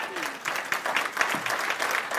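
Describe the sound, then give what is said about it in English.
An audience claps steadily, a dense wash of many hands at a fairly constant, moderate level with a few louder pops throughout. “Is that the best clapping y'all can do?”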